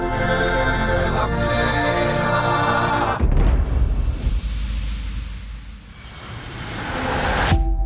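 A loud, steady airplane engine drone with a buzzing harmonic hum, then a swelling whooshing roar that dips briefly before surging again, with no voices.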